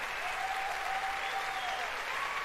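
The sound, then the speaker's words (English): A crowd claps and cheers in a steady, dense wash of applause at the announcement that raids are coming to the game The Division 2, with a few whoops and a sustained shout rising above it, holding at an even level throughout. “And people are cheering like it's a big deal.”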